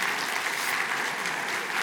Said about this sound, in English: Yeah, let's clap. Let's clap for them.